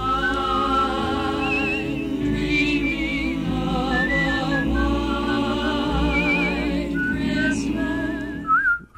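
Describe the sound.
A person whistles a wavering, vibrato-laden tune over a full instrumental accompaniment, the melody running steadily throughout before cutting off abruptly at the end.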